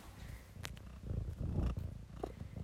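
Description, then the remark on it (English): A female cat purrs right up against the microphone, a close, steady low rumble pulsing in rhythm with its breathing, with a couple of faint clicks and no talking. “Doesn't she, like a, she doesn't sound like a cat, does she?”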